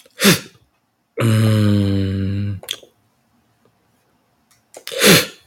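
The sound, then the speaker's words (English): A long, loud, low-pitched burp rumbles for over a second, set between two short, sharp breathy bursts at the start and end, with no talking. “Excuse me for burping and burping.”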